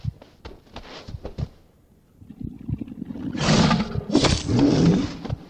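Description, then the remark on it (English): A video game bear, fought in a battle, growls and roars: first a series of short, grunting bursts, then two long, loud, rough roars with bright rasping texture, no talking over it. “Congratulations, you've killed the bear.”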